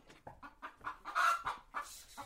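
Chickens running around a small farm of banana trees and cassava plants cluck in a busy, uneven series of short calls, fairly loud, with one squawk rising above the rest in the middle; no one is talking.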